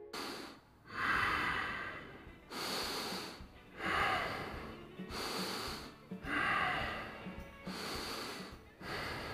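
Heavy, rhythmic breathing recorded up close, with raspy, slightly snorting breaths rising and falling in a slow, steady cycle of about four full breaths, no talking.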